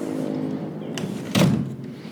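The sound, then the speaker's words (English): Outdoor traffic of many cars rumbles steadily in the background, and one car sweeps past partway through with a short, louder whoosh before the low hum settles again. No one speaks. “Okay, so there's a lot of cars too, but I hope you got to hear some birdies.”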